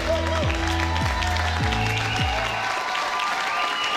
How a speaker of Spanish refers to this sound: Así que quiero pedirles que le reciban con un caluroso aplauso de bienvenida.